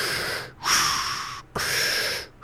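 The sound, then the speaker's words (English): Heavy, mechanical breathing through a scuba breathing device, recorded with a microphone on deep sea diving gear: two slow, hissing breath cycles, each a long airy rush separated by brief pauses, fairly loud with no talking. “And the breathing was done using a scuba breathing device.”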